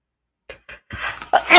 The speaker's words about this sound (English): Pardon me. Bless you.